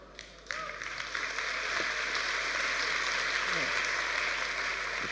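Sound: audience clapping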